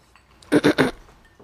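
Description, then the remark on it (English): Three quick clinks of glasses tapped together in a toast, bright and fairly loud, in rapid succession, with near silence before and after. “Well, cheers to that. Cheers to that.”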